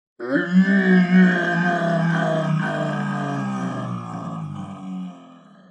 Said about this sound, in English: A weird scream echoes through the woods, and they're like, this has officially crossed the line from Scooby-Dooing this afternoon to possibly becoming an It scenario.